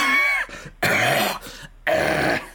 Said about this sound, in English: Sorry, I coughed so hard that I fucked up everything.